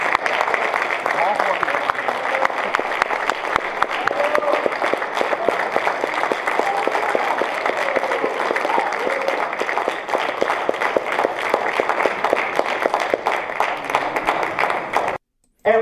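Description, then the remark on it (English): A small crowd applauds steadily, with scattered individual claps running continuously for about fifteen seconds, some murmuring voices mixed in, before the sound cuts off abruptly. “So you see, it's not a very big crowd there.”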